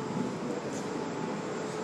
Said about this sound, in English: Your the train just pulled in. I don't know if I think this might be your stop.